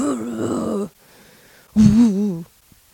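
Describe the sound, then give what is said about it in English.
A person imitates a barking dog with two loud, drawn-out voiced barks, each just under a second, separated by a short pause. The tone is low and groaning rather than sharp. “I really want to be like, just start barking like a dog.”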